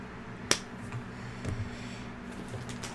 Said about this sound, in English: The door is open. And Nim and Matthias walk into the alley. The wet slaps of Matthias's hands as his peachy, wrinkly skin claps together.